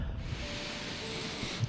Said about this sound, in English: Y'all like being sniffed?